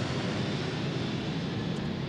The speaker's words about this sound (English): We'll let the plane go overhead.